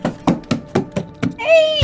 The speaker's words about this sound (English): Sharkop pounds on the door with no results.